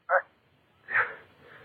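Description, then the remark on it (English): A dog barks twice in the distance, two short, muffled yelps separated by a brief pause, with a faint trailing tail after the second bark. “The dog again.”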